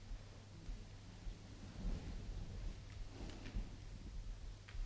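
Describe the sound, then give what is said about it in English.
Steady, soft rain hisses across the whole clip, with a low rumble underneath like thunder. It stays faint and even throughout, and nobody speaks. “I think it has stopped raining.”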